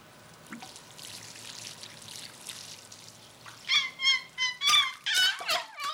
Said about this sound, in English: These basils look thirsty. Watering the plants, about another 6 gallons.